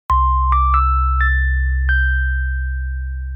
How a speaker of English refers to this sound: Yeah. It's a pity bell. I've been trying this whole time to get the bell. Been trying so hard.